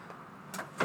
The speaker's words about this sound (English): She's just trying to shut the door.